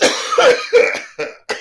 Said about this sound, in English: If you want to cough, I'll give you a fucking reason to cough. I'll choke you out. I get dry air. Dry air.